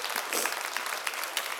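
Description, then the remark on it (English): A crowd applauds steadily, a dense wash of many hands clapping at once with no gaps, sustained and fairly loud throughout the short stretch. The audience at a Father's Day church service at City Life claps for God. “Clap it up for him, he's so awesome.”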